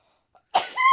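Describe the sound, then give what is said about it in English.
A single sneeze: a short breathy intake, then a sharp noisy burst that trails into a brief voiced tail. It is loud and stands alone, with no talking. “Bless you.”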